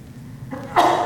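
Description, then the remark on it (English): A single sneeze: a brief rising intake of breath followed by a loud, sharp, hissing burst that cuts off abruptly. No one speaks. “Bless you.”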